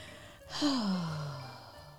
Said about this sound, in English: She's yawning again, everyone. I just need oxygen. Give her some oxygen.